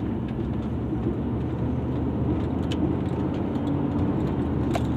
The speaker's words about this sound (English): Well, guys, apparently trains are going stupid this morning.